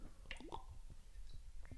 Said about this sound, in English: Now, I want you to ask yourself, have I drank water in the past 30 minutes? If you haven't, or if you have, let's grab our waters. We always do this every week. And hydrate our hot bod on 3, 2, 1. Cheers.